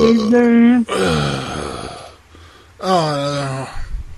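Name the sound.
burp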